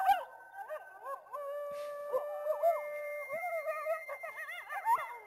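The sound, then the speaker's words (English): Several coyotes howl together at night in a steady, overlapping chorus, their long wavering cries rising and falling with quick yipping warbles, continuous throughout, with no voices present. “But there is, you heard coyotes at night. So, that's a little bit. Is a little bit like coyotes.”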